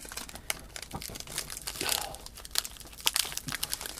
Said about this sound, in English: One of our studio audience heard potential food wrappings going